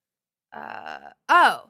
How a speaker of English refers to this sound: I have to burp. I'm sorry. I just burped a little bit.